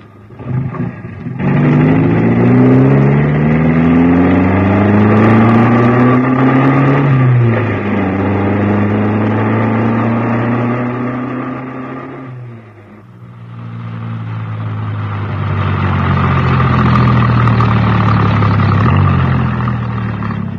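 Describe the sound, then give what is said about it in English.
A car engine is started with the ignition key, turns over and catches, then pulls away, its loud droning pitch climbing steadily through several gear changes with brief dips between them, and no one speaking. “Hold on. I'll just get the ignition key.”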